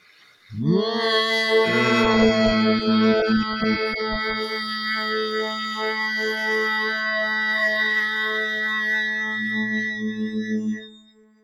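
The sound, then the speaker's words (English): A group of voices hums together on the exhale after a deep breath in, during a guided relaxation breathing exercise, in one long, steady drone that rises in quickly, holds at an even level for about ten seconds, then fades out. The blended tones sound full and slightly chorused. “And on that exhale, that's when you start to hum.”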